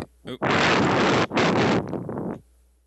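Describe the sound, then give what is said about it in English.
A loud, sudden blast of wind buffeting a microphone, roaring in two broad bursts with a brief dip between, then fluttering down and cutting off after about two seconds. “Got windy all of a sudden.”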